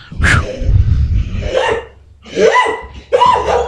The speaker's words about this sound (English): I think it's great that the little dog just stole the bone from the big dog, and the big dog doesn't know how to get it back. Oh, he does. The problem is the little dog is quicker and can get in more areas than he can